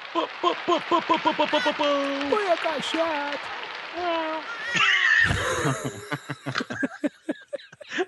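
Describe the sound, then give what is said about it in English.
A person imitates a cat, making a string of wavering, sliding-pitch meows after quick rhythmic vocal pulses, then a short noisy burst and scattered clicks to finish. “That's a good cat noise, though.”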